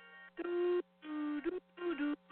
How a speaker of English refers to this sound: Damn, the phone's gone off the hook.